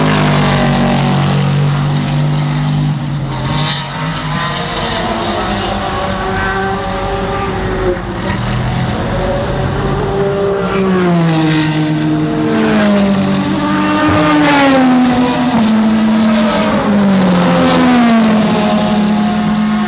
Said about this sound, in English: So got a bit more of that from America. Race cars. Love it.